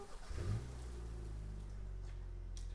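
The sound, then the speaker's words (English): A pickup truck engine cranks and catches, revving up sharply before settling into a steady, loud low rumble, with no talking. “Right then, I just jumped right back in my truck. Kicked her on.”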